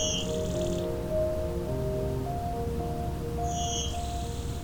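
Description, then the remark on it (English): A blue-winged warbler sings its buzzy two-part song twice in a shrubby meadow of dogwoods and hawthorns at McMaster Forest, Hamilton, Ontario, in late May: a high insect-like buzz dropping to a lower rasp, over a steady low background of hums and faint tonal calls. “It's late May and I'm at McMaster Forest in Hamilton, Ontario, exploring the territory of the blue-winged warbler in a meadow full of dogwoods, hawthorns, and other shrubs.”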